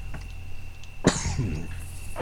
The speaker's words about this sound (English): is coughing because he's been smoking reefer, probably.